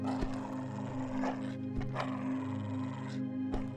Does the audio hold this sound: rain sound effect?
no